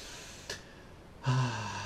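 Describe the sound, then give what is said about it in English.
A person draws a quick, audible breath in, followed by a louder, drawn-out breathy intake with a slight voiced edge, like an exaggerated deep meditative inhale while sitting down. “You'll just be, like, meditating, sitting down, and just, like, breathing in.”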